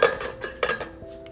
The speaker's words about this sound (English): Flipping my potatoes. Just enjoy this ASMR moment, you know, hearing dishes and me doing stuff around the kitchen.